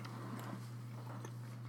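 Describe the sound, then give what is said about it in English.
Soft chewing with a few quiet crunchy bites spaced irregularly as someone eats a Cocoa PB Crunch plant protein bar, set against a steady low electrical hum; no one speaks. “Chewing.”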